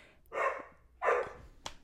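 Two loud dog barks about half a second apart, each a short harmonic burst, with a faint click or tap after the second and no talking.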